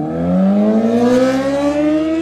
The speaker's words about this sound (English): Get your motorcycle out of the park. What the heck? This is a 15 mile per hour zone, sir.